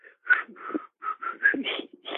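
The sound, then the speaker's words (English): A person whistles a short, bouncy pop melody of quick notes in a steady rhythm, moderately loud, with no talking. “You know, the basketball players would whistle that tune, that pop tune.”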